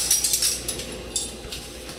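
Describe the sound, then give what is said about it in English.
Metal spoons clink and rattle against each other in a quick cluster of bright jingles as they are taken out for tasting, as if pulled from a drawer, with no talking. “So we need some spoons for tasting.”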